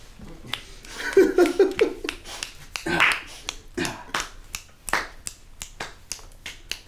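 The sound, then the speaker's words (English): A quick run of about 11 crisp finger snaps given after a campaign speech, in a loose, fairly steady rhythm, with a short voiced murmur and exclamation near the start before the snapping takes over. “I gave you a lot of snaps.”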